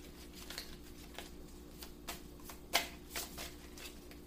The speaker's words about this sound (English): There's a card I keep seeing as I'm pulling, or should I say shuffling? And I'm curious if it's going to come out.